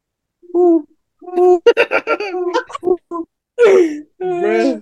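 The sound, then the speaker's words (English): A person imitates owl hooting with their voice, giving a few drawn-out, wavering hoots and a quick burst of choppy vocal sounds, loud. “That's what an owl sounds like.”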